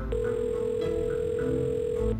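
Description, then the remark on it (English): A steady electronic phone tone hums for about two seconds, a call ringing on the caller's end before going to voicemail, heard alone without any voices over a faint low background rumble. “I have to call Jules.”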